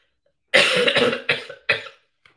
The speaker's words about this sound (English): Oh my goodness. I'm sorry. I apologize. I'm going through a cold. So now I'm getting the cough.